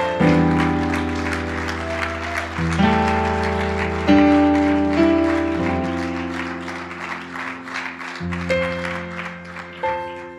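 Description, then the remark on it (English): An audience gives God a round of applause, clapping steadily for about ten seconds, a dense wash of clapping from many hands, while sustained keyboard or organ chords play underneath and shift a few times. “Come on, let's give God a round of applause.”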